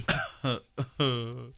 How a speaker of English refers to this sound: He's going to be coughing again.